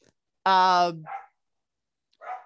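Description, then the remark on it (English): A dog barking at a delivery lets out one loud, sharp bark, followed by two shorter, muffled woofs spaced about a second apart, with no talking over them. “Sorry, that was a delivery. And my dog is going crazy.”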